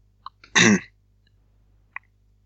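A single loud, harsh burst of coughing and throat clearing into the microphone, with small mouth clicks just before and after it, and no talking.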